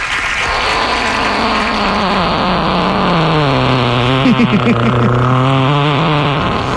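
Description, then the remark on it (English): A big, drawn-out fart sound played as a birthday request, low and buzzy, its pitch wobbling and fluttering as it stretches on for several seconds at a steady, loud level. “she would like a big old fart.”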